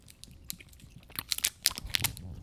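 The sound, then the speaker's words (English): Crunchy chewing on a strawberry hard candy, a quick run of crackling bites and crinkly snaps that grow denser and louder toward the end, with no talking. “I'm going to do the strawberry, of course. Was that even a question? Okay, you ready? I'm popping it in.”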